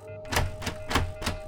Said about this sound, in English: He raced upstairs, and though a do not disturb sign hung from the knob, he knocked anyway.